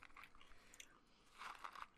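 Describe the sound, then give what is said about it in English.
Crisp crunching of someone chewing Smarties, a candy-coated milk chocolate, with a steady run of small bites that grow louder toward the end. No one speaks. “Do I chew it or suck it?”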